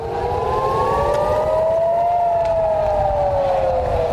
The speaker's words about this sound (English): In Israel, air raid sirens are as familiar to children as the lunch bell.